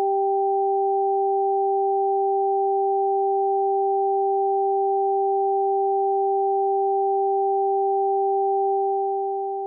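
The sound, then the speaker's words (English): A pair of pure electronic test tones played through headphones, one high and one low, each in the opposite ear, sounding steadily and evenly for about ten seconds with no voices, fading slightly at the very end. “Did you hear the high and the low tones in the same ears?”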